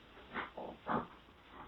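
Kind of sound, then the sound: animal, dog barking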